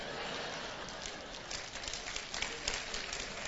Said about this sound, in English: Now, I noticed all the women clapping on that, and so here's the male's response.